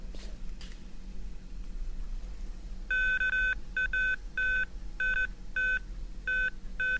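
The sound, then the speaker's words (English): A run of electronic beeps from a ground-penetrating radar indicating a positive response, about seven short tones at a steady high pitch, coming in an irregular rhythm after a couple of faint clicks over a low background hum. “And then you'll hear the beeping, which is the ground-penetrating radar indicating that it has found a positive response.”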